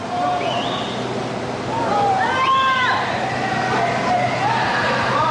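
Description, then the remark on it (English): A steady, loud roar of rushing water as a second tsunami wave, about 15 to 20 feet tall, surges back in, swelling slightly midway, while voices shout and call out over the churning flow. “And just as quickly as the water receded, it started rushing back. And this second wave was much more powerful than the first one.”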